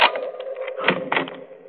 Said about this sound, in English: Oh, just a minute, I'll unlock the door.